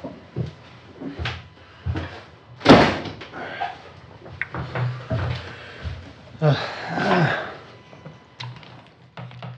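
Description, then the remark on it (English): A door is pushed shut with one loud thud, surrounded by softer knocks, rattles and shuffling handling noises, with faint indistinct voices in the background. “I was just going to shut the door.”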